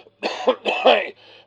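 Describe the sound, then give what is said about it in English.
Two harsh, rasping coughs in quick succession from a sick man who was gassed in the First World War, loud, with a brief pause between them and a faint wheezy breath afterward. No one speaks. “That's a bad cough he's got.”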